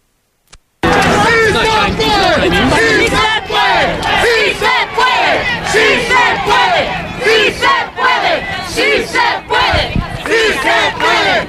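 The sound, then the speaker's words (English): A large crowd at the immigration rally in Albuquerque on May 1st chants loudly in unison, many voices rising and falling in a steady rhythmic pattern. It starts abruptly after a moment of silence and continues without a break. “one of the people responsible for organizing the immigration rally in Albuquerque on May 1st.”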